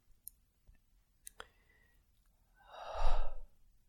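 A few sharp clicks come first, then a single loud, forceful exhale of about a second, breathy, with no talking, made deliberately by a practitioner during a group session.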